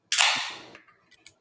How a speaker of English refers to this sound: Jesus, someone's cracking a beer.